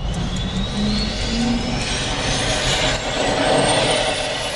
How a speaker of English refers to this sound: On the deck, they're firing up the engines of the ship's Sea Sprite helicopter.